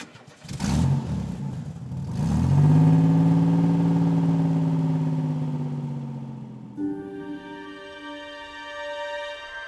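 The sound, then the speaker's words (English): A car engine cranks and catches, revs up loudly and holds a steady drone, then shifts to a smoother, higher hum as the car pulls away and drives on, on a cool, overcast autumn day in Cape Town, South Africa, setting off on a two-hour drive to the Hemelin Arde Valley near Hermanus, Western Cape. “As I get into the car and prepare for the two-hour journey into the Hemelin Arde Valley, just outside the seaside town of Hermanus in the Western Cape of South Africa.”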